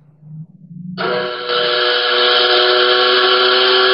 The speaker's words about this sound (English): I don't know what that's supposed to be, but you tell me it's a train whistle. It sounds more like a big old fart. It's a fucking... I don't know what it is, dude.